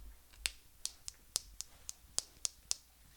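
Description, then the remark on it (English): A wrist joint cracks over and over, about nine sharp, dry pops in a quick, slightly uneven rhythm, with near silence between them. “It sounds like she's working on a machine. That's my wrist.”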